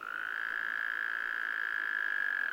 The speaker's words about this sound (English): After today, Lindsay looks forward to hearing the sound of Wyoming toads breeding on his land.